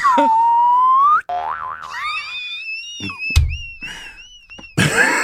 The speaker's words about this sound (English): First of all, if you ever use the boing noise, I'm hooked. You use that boing, like I'm hooked. That was amazing. I'm in.